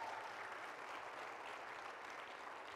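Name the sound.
audience applause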